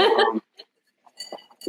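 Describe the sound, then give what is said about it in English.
Glasses clink together in a toast to the Champions Tour, two bright ringing taps, after a short burst of voices or laughter at the start. “So we cheers. I'd like to toast to that.”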